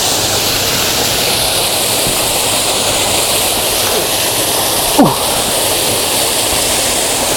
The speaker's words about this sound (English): It's a marvellous waterfall.